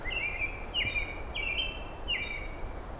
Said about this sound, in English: And a bright and cheery American red start, too. Both these species named for species in Europe that are not at all related to them.